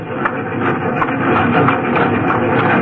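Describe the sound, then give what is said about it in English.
A steady, loud rumble of a running steam train, with broad hissing noise and faint rhythmic pulses throughout, and no voices. “Just be sure to meet me with Diablo when the train slows down for the other horseshoe curve at Pilgrim Point.”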